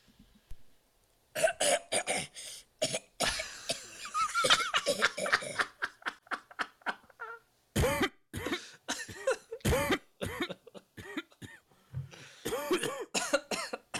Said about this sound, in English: Making me cough. I can't stop this. There we go.